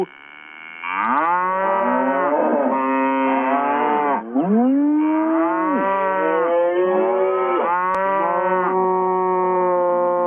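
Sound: cow mooing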